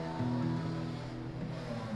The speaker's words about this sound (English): Whoa. This was just absolutely amazing, amazing. I haven't heard a motorcycle like this.